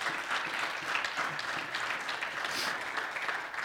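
A crowd applauds steadily, a dense, even wash of many hands clapping that holds at a constant moderate level for several seconds with no pauses.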